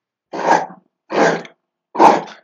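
A dog worrying a bone: three short, gruff rasping bursts, evenly spaced about a second apart with silence between, fairly loud and with no talking.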